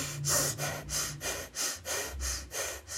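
Steady, rhythmic breathing in and out through the nose during a seated breathing exercise, about six even sniffing breaths of equal length in three seconds with a soft airy hiss on each.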